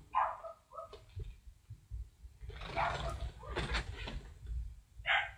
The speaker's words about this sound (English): Why is that dog barking? I don't know.